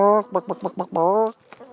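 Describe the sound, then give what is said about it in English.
A chicken, kept together with dogs and cats, gives a quick run of five or so clucks, then one drawn-out squawk, followed by a couple of softer noises; nobody speaks. “Chickens, dogs, cats, all living together in peace.”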